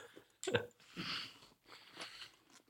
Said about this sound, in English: Am I going to get points off for chewing while I'm answering these questions?